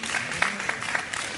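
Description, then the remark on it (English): An audience applauds a speaker's statement that women should not have to express breast milk in a toilet, with a steady wash of many hands clapping, dense and even, with a few sharper claps standing out. No voices break through. “Well, thank you, but I mean, the fact that I'm getting applause for that is a statement in itself.”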